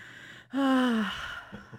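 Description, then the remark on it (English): A cat lets out one loud snore, a breathy exhale with a nasal, slightly tonal whine that sinks in pitch, then fades into soft snuffling breaths against a faint low hum. “Is the cat he's dreaming? Snoring. Oh, he's snoring. He's so loud.”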